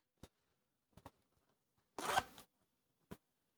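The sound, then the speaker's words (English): A water-resistant zipper on a pocket of a Velis fleece pant: a few short clicks, then one longer, rasping zip lasting about half a second, and a final tick. No one speaks. “Very water resistant zippers there for all the pockets.”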